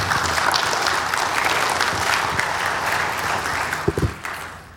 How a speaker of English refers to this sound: Mary Beth Allen, everyone, round of applause.